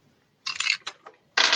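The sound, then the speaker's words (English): Dice are rolled for damage in a game. They clatter across a hard tabletop in two loud bursts of rattling, with a few scattered clicks between as they settle, with no talking. “Okay, roll but damage both of you.”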